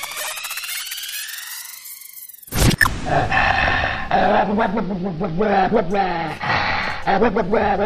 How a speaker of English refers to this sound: What is happening to this dog in this clip, by the way? He's mad. Oh, he's mad. This is because you're blaming your farts on him.